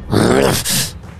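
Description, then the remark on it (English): A voice imitates the swooping whoosh of a creature gliding over to attack from the side: a loud, breathy rush with a rising-then-falling hum, followed by a shorter airy exhale that trails off. “a whoosh, and you look over to the side and you see it glide over and try to literally attack you from the side.”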